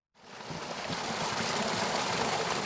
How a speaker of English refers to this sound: Water flows out of a thick black tube down a ravine into Strawberry Creek. This quarter-mile stretch of waterway now functions as part of a complex filtration system.